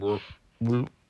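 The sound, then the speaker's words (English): A voice imitates a stomach growl with two short, low, throaty croaks, each about a quarter second long with a brief gap between them, fairly loud and with no other sound. “So, wait, every time you hear your stomach go like, do you think that's a frog going?”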